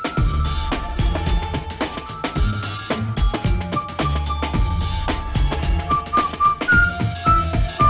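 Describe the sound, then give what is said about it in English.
A catchy whistled jingle melody rides over a bright, punchy musical backing with steady drum hits, sliding between notes near the end. It's loud, with no talking. “Tell me you don't whistle along to that one.”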